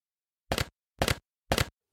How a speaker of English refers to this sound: That was me punching a cereal box.